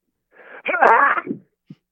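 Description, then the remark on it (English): A theatrical sneeze performed by a voice in the style of Dwayne Johnson (The Rock): a breathy, wavering inhale builds up before a loud, harmonic burst, followed by a brief trailing exhale and a small click. “Okay, a sneeze in the style of Dwayne Johnson.”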